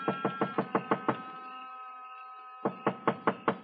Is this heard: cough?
no